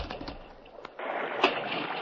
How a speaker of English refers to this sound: That stallion jumped right into the creek.